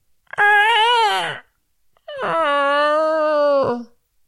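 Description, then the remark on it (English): A voice imitates the door of a haunted barn creaking open: two long, drawn-out groaning tones, the first wavering and sliding down, the second a steadier, longer moan ending abruptly. “Then you hear the barn door creak open.”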